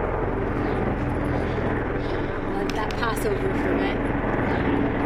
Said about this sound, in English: Two military helicopters. Three military helicopters.